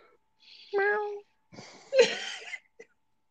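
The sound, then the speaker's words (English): A voice imitates the growl of a giant 20-foot cat in a movie: a short whiny, rising snarl followed by a louder, raspy roar that breaks off abruptly, fairly loud, with a brief catch at the end. “Realistic tiger growl. From 20-foot cat.”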